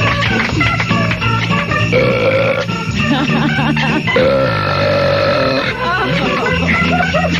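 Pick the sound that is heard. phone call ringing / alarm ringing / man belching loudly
man belching loudly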